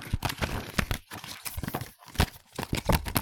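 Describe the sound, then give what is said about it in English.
A paper-based item bought in Korea being rustled and crinkled, a steady run of sharp, irregular crackling bursts with brief pauses, fairly loud and with no talking. “So it's another non-digital one. Yeah, another paper-based.”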